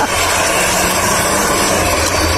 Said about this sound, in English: Not a fan of that one? No. That sounds broken. What is that? That's some seriously modified exhaust.